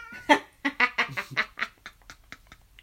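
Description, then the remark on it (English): A cat lets out a quick string of short, harsh yowling cries on a very snowy day, loud at first and then fading into softer, scattered calls over a few seconds, with no talking. “It's a very snowy day today, and the cat's all acting up.”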